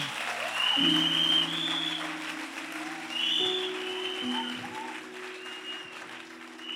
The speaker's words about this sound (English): See how you are clapping for India. कैसे ताली बजा रहे हैं.